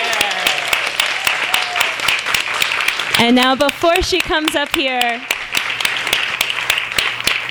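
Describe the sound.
An audience applauds an author at a book reading, steadily the whole way through, a dense patter of many hands clapping, while a voice speaks over the clapping for a few seconds in the middle.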